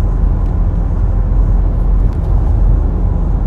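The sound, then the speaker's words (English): Steady, loud low-frequency road rumble from inside a moving car driving on the QEW highway, a continuous engine and tire drone with no pauses and no voices. “I don't know if I should talk while driving or not, because there's a big ass truck which I barely missed.”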